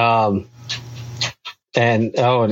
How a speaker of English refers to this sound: Apparently Mowgli's joining us now, too. There's now a dog on the podcast.